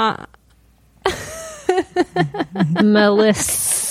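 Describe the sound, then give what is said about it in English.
A voice makes drawn-out, sing-song vocal sounds, then ends with a short, sharp hiss imitating a snake, fairly loud. “Like a snake.”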